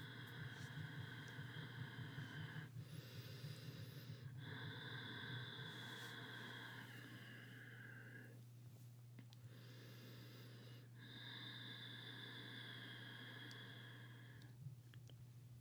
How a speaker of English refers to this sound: And if you hear, I'll shut up here in a minute, but you'll hear her breathing really deeply. That's kind of her process of getting focused and connecting.